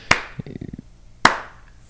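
Two sharp, loud hand claps roughly a second apart, with a brief low murmur between them and quiet afterward.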